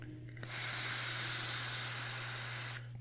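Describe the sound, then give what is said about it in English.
A steady, airy exhale hiss from a vape, bright and breathy, runs unbroken for a little over two seconds over a faint low hum before cutting off. No one speaks. “So that's what I've been vaping, you know.”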